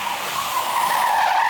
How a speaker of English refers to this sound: A car comes drifting sideways through the first turn. The tires are a screaming for mercy. But suddenly, you realize that they're the only thing that's screaming. There is no engine sound.